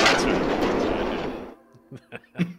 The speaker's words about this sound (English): often there's a train go by. Yeah. So often you won't even notice it.